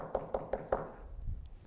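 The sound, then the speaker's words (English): Four quick, evenly spaced knocks on a door, sharp, as members of Community Baptist church go door to door evangelizing, followed by a brief quiet pause with faint low rumble. “We're knocking on doors today, folks.”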